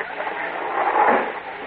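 A door chain bolt slides free and a door creaks open, a short continuous scraping, rattling rush that swells briefly in the middle, with no voices.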